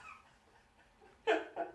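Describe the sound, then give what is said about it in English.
A violent sneeze erupts as a sudden, loud, harsh burst, followed a moment later by a shorter second snort, after a stretch of quiet background murmur. “That was the most violent sneeze.”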